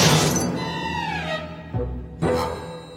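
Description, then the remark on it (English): In a cartoon, a glass jar holding Brain is thrown by Mindy and shatters against a rock with a sharp, bright crash, its pieces ringing and tinkling as they fade, followed by two more short breaking impacts a moment later, loud with no talking. “She then gets distracted and throws the jar, which crashes into a rock.”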